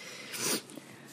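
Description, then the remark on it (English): A single short, breathy sniffle from someone who is sick rises and fades within half a second, soft against a quiet background, with no talking. “Between the sniffles and the croaks and coughs.”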